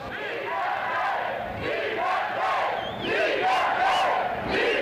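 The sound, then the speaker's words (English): A crowd of as many as 10,000 people at a rally on the Hill chants and shouts loudly and continuously in support of the radio station Schwa FM and free speech, many voices rising and falling in rough rhythmic surges with high whistles and cries cutting through the roar. “as many as 10,000 of them have gathered here to demand loudly that the federal government restore Schwa FM's right”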